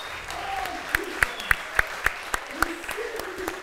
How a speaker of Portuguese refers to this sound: E se você crê, aplauda o Senhor.